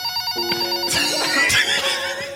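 A telephone rings steadily during an outgoing call, its bright electronic tone sustained throughout with a few sharper bursts layered over it. The sound is fairly loud, and no one speaks.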